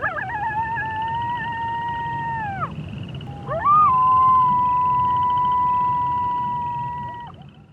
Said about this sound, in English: Dingoes.